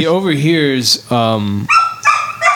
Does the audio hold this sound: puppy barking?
yes